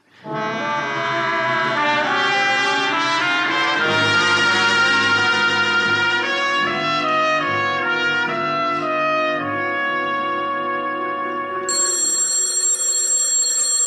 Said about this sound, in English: Telephone's ringing